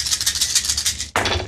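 dice rattling

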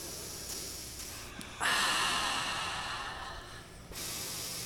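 breathing through the nose

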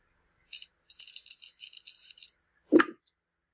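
dice being rolled

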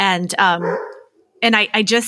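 dog barking

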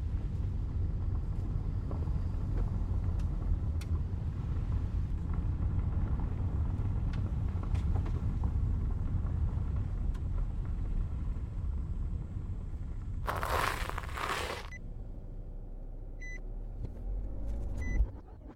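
car engine running

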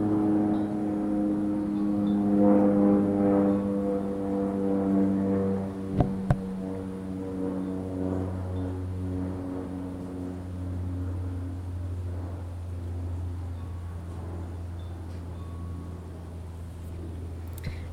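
airplane flying overhead

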